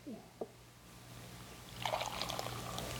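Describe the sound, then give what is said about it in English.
Hot water is poured into a mug for tea, a steady splashing trickle rising after a brief clink, with a low hum underneath. “Let me get my little tea bag out of the way here.”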